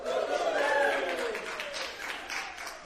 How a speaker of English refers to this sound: And I heard you clapping at home, too. You're awesome.